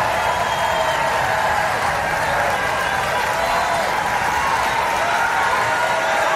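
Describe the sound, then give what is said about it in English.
A large rally crowd roars and claps continuously, a dense, loud wall of cheering with voices chanting 'Bernie' together throughout, no single speaker standing out. “And then do you hear what they're saying? Bernie. Bernie, Bernie, Bernie.”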